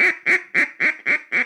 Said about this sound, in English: That first one was ducks feeding.